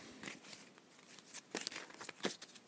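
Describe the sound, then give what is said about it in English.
Soft papery rustling and riffling as a deck of cards just taken out of its packet is shuffled, with a few sharper flicks and snaps breaking through the steady quiet shuffle. No one speaks. “I then take them out the packet, which is what I'm doing now. I give them a shuffle.”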